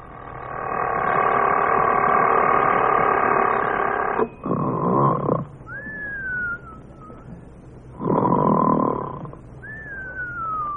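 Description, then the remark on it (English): An alarm clock rings in Jack Benny's room at Guernsey's Winter Sports Lodge at about 5 a.m., in a steady, harsh, buzzing tone for about four seconds, then stops. Two loud rasping bursts follow, each trailed by a thin whistle that slides downward in pitch. “Anyway, Friday afternoon, Dennis, Jack, Rochester, and myself drove up to Guernsey's Winter Sports Lodge, and the next morning, must have been about 5 a.m., I heard the alarm clock ringing in Jack's room.”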